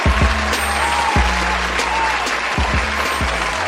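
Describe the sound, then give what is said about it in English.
An applause sound effect: steady crowd applause, dense and continuous for a few seconds, a loud wash of many hands clapping at an even level with a few low thumps underneath. “Insert applause.”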